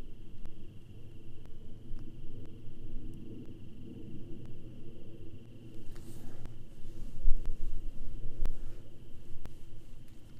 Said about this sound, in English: And then maybe you also hear the crickets.